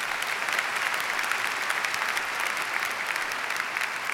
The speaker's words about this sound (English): 34 years after he collected his high school, yes, that's worth a round of applause. Give him that, okay?